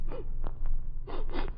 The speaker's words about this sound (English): Hey, come here. Take a sniff of those gloves. Not too deep a sniff.